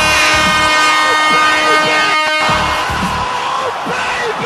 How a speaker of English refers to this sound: Do we have some kind of air horn or something for Giovinco's, like double nutmeg with the back heel nutmeg involved as well?